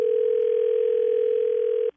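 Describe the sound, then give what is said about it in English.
A steady, loud telephone dial tone, heard while placing a call to set up a three-way call, holds one unbroken pitch for nearly two seconds, then cuts off abruptly, with no voices present. “I want you to call from your phone and put us on three-way and say, hey, you need to talk to these people.”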